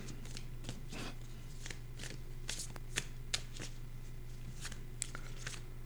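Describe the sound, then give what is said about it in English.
Tarot cards being shuffled, a steady run of soft papery riffles and slaps with a few sharper clicks, over a low constant hum. “Shuffling again.”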